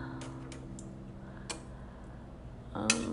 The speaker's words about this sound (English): Just enjoy this ASMR moment, you know, hearing dishes and me doing stuff around the kitchen.